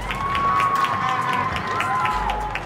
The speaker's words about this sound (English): Clapping. A simple gesture repeated from balconies, rooftops and windows across the world to support those on the front lines of this pandemic.